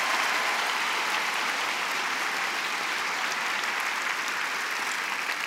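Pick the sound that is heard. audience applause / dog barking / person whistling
audience applause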